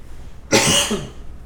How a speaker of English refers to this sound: One of them coughed. They have allergies.